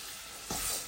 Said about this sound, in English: Now, at this point, all of the pancetta has melted, as well has cooked, and the beet peas have melted. So we're going to pour the cupful of orzo pasta into the bowl here, right?